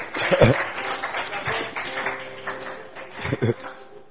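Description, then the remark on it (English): A crowd claps their hands for the Lord together in a dense, steady patter, with a few louder bursts near the start and end and voices mixed in over the clapping. “Clap your two hands for the Lord.”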